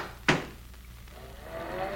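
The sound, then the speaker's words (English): A car door shuts with one solid, thudding slam, followed by a low steady rumble and a faint rising tonal hum. No one speaks. “Close the door. Let's get rolling.”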